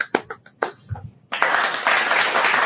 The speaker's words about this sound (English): Golf clap.